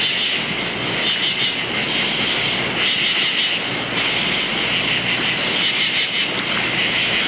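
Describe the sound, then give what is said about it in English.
A 7th Avenue IRT Express subway train roars past in a loud, unbroken rush, its low rumble topped by a bright metallic hiss that holds steady for about seven seconds, with no voices. “What do these Pennsylvania tree frogs croaking into the night have in common with this 7th Avenue IRT Express?”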